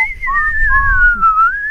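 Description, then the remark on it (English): A person imitates a long, eerie whistle heard in the woods, crazy whistling that wavers slowly up and down in pitch, sustained and fairly loud, with a low rumble underneath. “Yeah, and just doing these crazy whistles and just going up and down, and it was just kind of echoing.”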